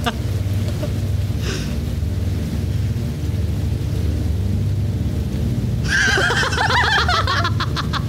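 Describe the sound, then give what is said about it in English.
Steady rain hisses over a deep, rolling thunder rumble that fills the background, with a burst of chirpy, laugh-like sounds breaking in near the end. “Oh, that rain.”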